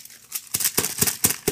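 Crisp paper crackling and rustling as a sheet of printed news kept in a pants pocket is unfolded, with a rapid series of sharp crinkles spaced a fraction of a second apart and no talking.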